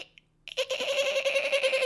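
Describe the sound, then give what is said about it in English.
A voice imitates a dolphin with a sustained, high, squeaky chattering trill that starts abruptly after a brief quiet moment and holds steady, strong and shrill, to the end. “Oh, I almost couldn't remember how to do a dolphin noise then.”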